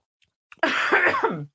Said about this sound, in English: I have to cough.